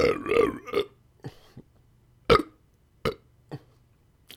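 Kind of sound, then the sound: human body sound, loud burp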